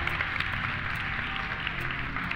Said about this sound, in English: Y'all should clap.